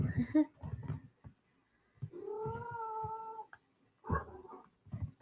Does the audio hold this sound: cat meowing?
yes